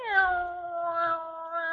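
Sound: house cat meowing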